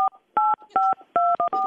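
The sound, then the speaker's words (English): A rapid series of about six telephone keypad tones, each a steady dual-pitched beep lasting a fraction of a second, separated by short gaps, with no talking, keyed in over a phone call in place of giving a phone number. “It just sounded like dial tone.”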